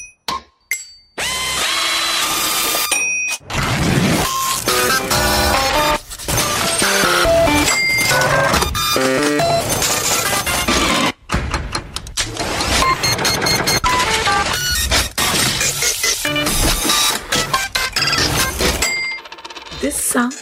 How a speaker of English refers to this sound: These guys have kind of made music, not as well as that, but using, again, factory sounds. This is what it sounds like.